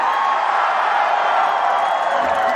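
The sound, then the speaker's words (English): A dense, roaring concert crowd at a 2013 show cheers and whoops continuously, a loud wall of voices sustained at a steady level throughout with no pauses. “Listen to that crowd. They went nuts.”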